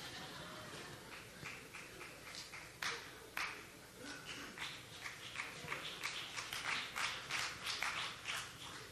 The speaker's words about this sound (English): I think that's all the cigar smokers clapping.